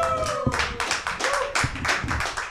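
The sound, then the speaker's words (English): A live audience at a comedy theater applauds, a dense wash of many hands clapping in rapid, overlapping bursts that sound fairly loud, with no talking over it. “And we're in front of a live crowd here at Tap Comedy Theater.”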